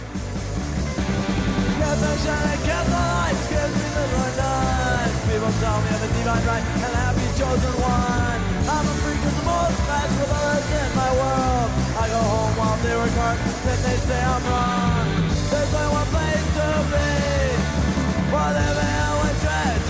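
A loud, driving early-1980s hardcore punk song plays throughout, with dense distorted guitars, relentless drums and shouted vocals filling the whole stretch at a steady, high intensity.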